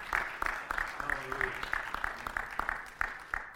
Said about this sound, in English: Come on, somebody clap. Somebody put your hands together.